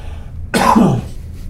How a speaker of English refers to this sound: I'm gonna cough here.